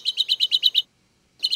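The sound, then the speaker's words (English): Small tree finch song: a quick, even run of seven sharp, high chit notes, a short pause, then the series starting again. Clear, with no voices. “That's a small tree finch.”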